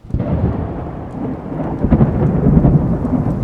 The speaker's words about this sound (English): You jump when the silence breaks with an almighty crack. A storm rolling in.